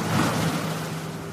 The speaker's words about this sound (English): So the wind was strong and very cold. This wind created a huge waves. And the sounds of these waves, you can compare it to the sounds of the air strikes that we heard in Syria.